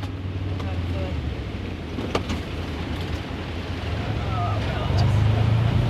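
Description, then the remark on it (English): The small engine of a side-by-side utility vehicle drones steadily, its low hum rising and straining toward the end as it climbs a hill in volatile, windy conditions to check on stock, with wind buffeting over it. “I jump into a side-by-side with Lucy Moffat.”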